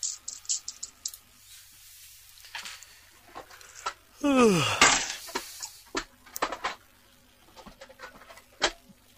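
Rummaging through a tin for six-sided dice, with a scatter of small sharp clicks and rattles like dice being shuffled around in the tin, broken by a brief squeaky scrape midway.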